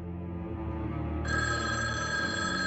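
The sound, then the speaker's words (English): A rotary telephone rings loudly, its bell ringing continuously for the whole clip. Partway through, the ring grows brighter and more shrill. No voices are heard. “And then the phone rings again, and it's this great like zoom in on this rotary phone.”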